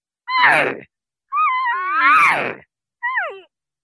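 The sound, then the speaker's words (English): A voice imitates a cow elk's estrus call, the call of a cow elk in heat: three drawn-out, whiny mewing cries with sliding, wavering pitch, the middle one longest, the last short and falling, with brief pauses between. “I can also do an estrus call, which is when the cow elk are in heat.”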